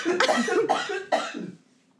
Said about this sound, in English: Take a shot every time … coughs on the podcast.